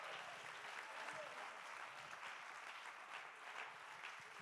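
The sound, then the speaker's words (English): An audience claps their hands steadily to give praise to God, a dense, continuous patter of many overlapping claps holding an even loudness for the whole stretch, with no voices rising above it. “Oh, let's clap our hands and give him praise.”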